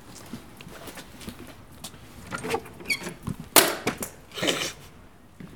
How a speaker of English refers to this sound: The door handle has just fallen off the door of the studio. I guess I must be in the right place then.